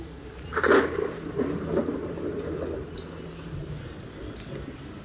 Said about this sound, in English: Have you figured out what's wrong yet? Yes, there was wind. And thunder.